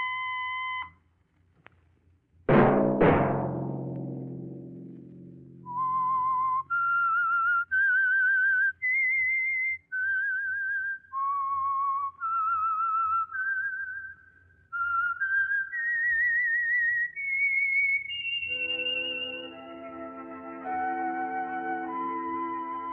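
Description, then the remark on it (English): The whistled signature tune of the Signal Oil radio program The Whistler: a clear, loud whistled melody of sustained notes rising and falling, following an opening struck chime that rings and decays. Near the end, fuller, lower musical tones join in. No one speaks. “Let that whistle be your signal for the Signal Oil program, The Whistler, each Sunday night at this same time.”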